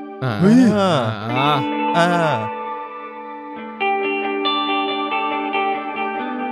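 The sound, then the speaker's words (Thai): A warbling, heavily processed tone from a reverb effects unit being demonstrated for sale swells and glides for a couple of seconds, then gives way to the unit's sustained, reverb-soaked notes with a bowed, violin-like timbre that ring on steadily and fairly loud. “ขายของอยู่ซึ่งรีเวิร์บเนี่ยก็มีเสียงไวโอลินด้วยได้ยินไหม”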